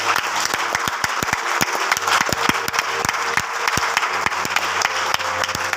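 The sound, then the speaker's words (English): An audience claps together in praise to God, a dense, steady wash of many hands lasting several seconds at an even, fairly loud level, with no voices standing out. “Can we give a clap of praise to the Lord our God?”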